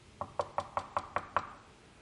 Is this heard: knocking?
yes